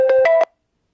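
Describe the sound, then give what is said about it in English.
A phone's electronic ringtone for an incoming call chirps in three quick tonal bursts, fairly loud, then cuts off abruptly into silence. No one speaks. “Damn, she got a phone call in the midst of ass shit.”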